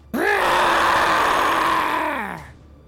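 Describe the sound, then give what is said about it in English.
A single loud, sustained roar yelled by a player in a tabletop role-playing game, screaming out a character's anger, rising sharply in pitch at the start, holding steady and raspy for about two seconds, then sliding down and fading out. “A roar is yelled, and you hear several voices down the hall.”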